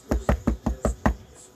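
Six quick, evenly spaced knocks on a door, loud with a solid, thudding body, followed by a brief quiet tail. No voices.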